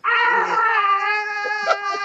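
A man screams as he falls from the roof of the LexCorp building at night toward the crowds below, a long, loud, high-pitched scream that holds a steady, strained tone for about two seconds without a break, with no other voices.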